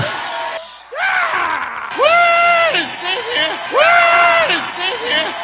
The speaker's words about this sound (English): The difference is that ruined Howard Dean. Remember? Right. I mean, that it was just that little scream of his that just put him under and he was done.